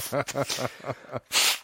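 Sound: person blowing their nose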